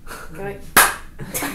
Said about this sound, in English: We're keeping the clap in. Keeping the clap in. Guys, every time we say something we want to be edited out, we clap really loud so Liam knows where to edit it out.